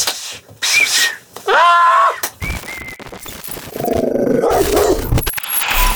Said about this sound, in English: Dog in the yard.